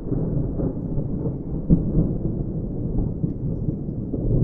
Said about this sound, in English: What if it did rain again? Rain? Again? So, it rained.